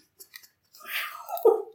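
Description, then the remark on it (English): A dog, Prince, in a film scene chewing and eating photographs: a couple of soft clicks, then about a second of crunchy, smacking mastication that swells to a louder bite near the end, with no talking. “He eats the pictures.”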